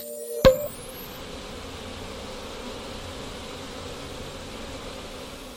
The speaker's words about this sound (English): Hey, say, you hear that little buzz of the light bulb there? Oh, is the light bulb out again? Oh, wow, yeah, it is. Oh, that can be sort of annoying. I can't stand that sound. Oh, that buzzing sound? More of a whirzing.